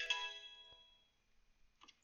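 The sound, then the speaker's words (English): A single bright electronic chime rings out, a phone's text message alert as a text from Hunter arrives, its tone ringing on and fading over about a second, followed by faint small clicks and shuffling. “Hunter is texting me.”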